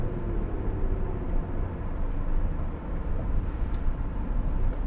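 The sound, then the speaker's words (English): Steady, continuous road traffic noise: a dense low rumble with a broad hiss above it, holding at an even, fairly loud level throughout with no voices. “Yeah, as traffic's hitting.”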